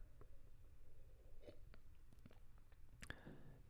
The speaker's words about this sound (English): I'm gonna do a disrespectful sip of the water.